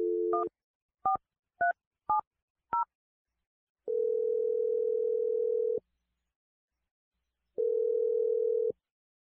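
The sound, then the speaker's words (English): A short steady phone tone, then four quick two-note keypad beeps as a number is dialed, followed by two long, level, low-pitched ringing tones separated by a pause, during a call placed by the radio show Brooke and Jeffrey in the Morning. No one speaks. “Okay, I'm gonna dial number now.”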